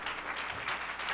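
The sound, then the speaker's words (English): A seated church audience gives the Lord a hand clap, a dense, steady patter of applause, many hands blending into a continuous bright roar with no voices over it. “Would you give the Lord a hand clap as you're seated tonight?”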